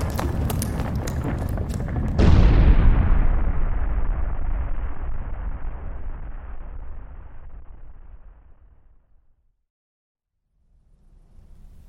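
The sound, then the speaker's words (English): A single loud explosion booms with a sharp onset, then a long rumbling decay fades over several seconds into silence, with faint low noise returning at the end. “That was quite a bang, love.”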